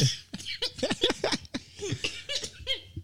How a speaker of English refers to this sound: Damn, you coffee lungs out, ain't it? Boy, got that weed cough.